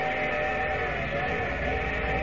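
A steady train station whistle sounds for a couple of seconds as the train is about to pull into the station: one sustained, reedy blast with layered harmonic tones, holding an even loudness from start to finish with no talking over it.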